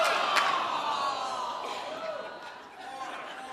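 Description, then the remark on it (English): An audience at a sermon applauds and cheers, a dense wash of clapping with raised voices running through it, steady and loud for the whole stretch before easing slightly near the end. “Whoever applauded, tie their hands together with rubber bands.”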